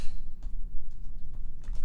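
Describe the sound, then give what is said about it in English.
Several quick, light clicks and taps from a mouse and keyboard as someone clicks on an online article about an Arrested Development Easter egg, in an irregular rhythm over a low steady hum, with no one speaking. “I hope it says Civil War because I'm clicking on it.”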